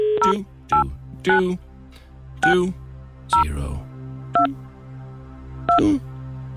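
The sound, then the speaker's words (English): Roughly seven telephone keypad tones beep one after another at an uneven pace as a phone number is dialed, each short dual-pitched burst clear and fairly loud over a low steady background hum. “Hope we get the right response at the end of the phone.”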